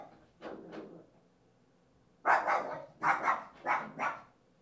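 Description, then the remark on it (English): A dog barks repeatedly in quick, agitated bursts as a neighbor comes in and out: two muffled barks first, then a loud run of about five sharp barks with no one talking. “So, if you can't hear the dog is going crazy, and it's partially because our current neighbor is coming in and out more than she used to because she has a new little baby beagle.”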